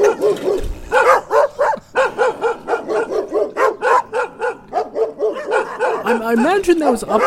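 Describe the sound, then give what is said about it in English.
Several dogs bark over one another in a loud, nearly nonstop chorus of overlapping barks and yips, with a rising whine or howl near the end. “I am curious what dogpound.mp3 is”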